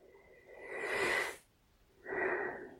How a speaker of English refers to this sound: deep, even breaths, three deep breaths to focus your attention on your inner world.